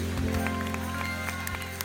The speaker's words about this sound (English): Come on, clap your hands, everybody, and give the Lord praise.